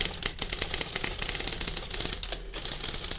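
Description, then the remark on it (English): Typewriter keys clack in a rapid, steady stream of sharp mechanical taps, fairly loud, with no voices present. “I have to give the credit to her because I would never have even dreamed of going into business until she introduced me to the typewriter.”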